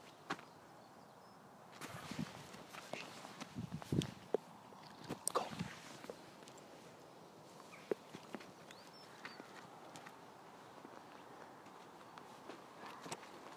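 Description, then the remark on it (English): Horse hooves clip-clop unevenly on a path, a series of sharp knocking steps over quiet outdoor background noise, with no one talking. “Although you wouldn't dream of chasing a horse, I think.”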